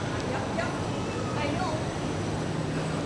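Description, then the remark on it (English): A train pulling into a station platform, a steady, dense rumble and hiss filling the space at constant loudness, with faint metallic squeals and indistinct voices underneath. “And the train is here.”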